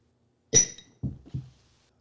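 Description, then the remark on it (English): Shot glasses clink together in a toast: one bright strike with a short high ring, followed by two duller, softer knocks as they are set down. “There's the clink I know and love.”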